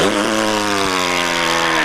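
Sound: loud fart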